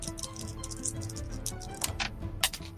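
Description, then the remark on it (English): Dice rattle and skitter across a desk in a quick run of light, uneven clicks, then drop off its edge with a sharper knock near the end. No one speaks. “I will roll my dice off my desk. So I need to roll it again.”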